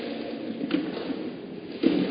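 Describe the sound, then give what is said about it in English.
Chairs being shifted and set down in a church, a couple of dull knocks and scrapes, with a steady murmur of room noise in between. “Can you help? Can you put 10 chairs here?”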